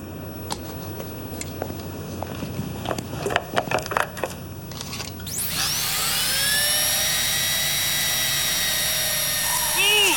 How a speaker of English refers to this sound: He picks up a power drill.